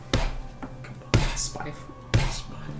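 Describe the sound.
Three dull thuds at the door, evenly spaced about a second apart, each a heavy low knock that fades quickly over a faint steady hum.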